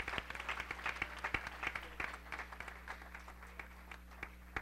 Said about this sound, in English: Can we give that hand clap to Jesus right now? He's worthy.